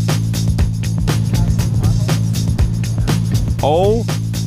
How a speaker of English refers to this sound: I mean, we're driving, we're hitting potholes, we're counting deer.